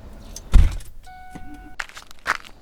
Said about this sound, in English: From behind, we see a car approaching her. As it gets closer, we see that it is Vera driving the car. The car pulls up and stops beside Esther.